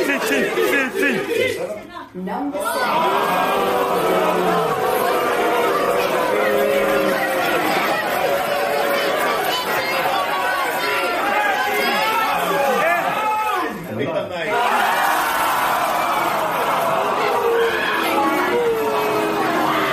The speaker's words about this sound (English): You start off when a crowd turns nasty during a cup draw, is it?